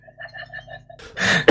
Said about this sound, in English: Well, sorry for coughing, guys. No doubt I won't edit that out, but my apologies to everybody whose ears got blasted.